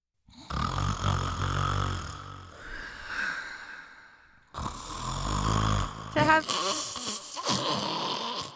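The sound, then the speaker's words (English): A person imitates a grandmother's loud, rattling snore: two long, rough inhaled snorts with low-frequency buzzing, separated by a brief pause, followed by throaty snorting and wheezy trailing sounds. “Can you approximate your grandmother's snore, please?”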